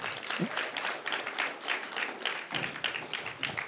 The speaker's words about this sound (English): Yes, go ahead. You can applaud him.